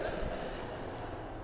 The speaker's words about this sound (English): or yeah, there's kids everywhere, the train's going by, whatever. Right on cue.